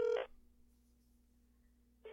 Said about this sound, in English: It takes three rings for real? Really? It takes this long. I guess it's got to go to voicemail.